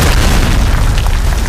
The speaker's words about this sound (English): Then, Kingpin knocks out a support pillar, which brings a huge part of the concrete structure down on Spider-Man, apparently crushing him.